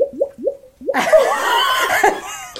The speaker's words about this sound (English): Here we go. It's a gurgle pot. It's wonderful. It makes me so happy.